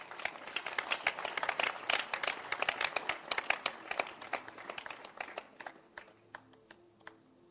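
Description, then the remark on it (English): A group of people applauding a man, a dense, crackling burst of irregular hand claps that holds steady, then thins out and fades over the final seconds as a faint voice surfaces underneath. “Let's clap our hands for him.”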